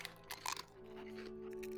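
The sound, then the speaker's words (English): Quiet crunching as a raw egg is bitten and eaten shell and all, a few crisp bursts early on before fading into a steady low hum. “People get so mad when I say to eat the eggshell.”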